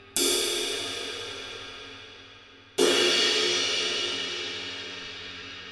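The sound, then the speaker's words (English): A 20-inch, 1900-gram jazz crash ride cymbal struck twice, a few seconds apart, each hit blooming into a dark, shimmering wash that slowly decays; no one speaks. “It's a 20-inch, and the weight... 1900 grams.”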